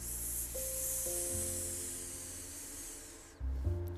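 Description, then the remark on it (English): A voice imitates a boa constrictor's hiss, part of an animal 'what do you hear?' rhyme, with one long, steady, airy hiss lasting about three seconds over soft sustained musical notes, then it cuts off and the music continues. “Can you hiss like a boa constrictor?”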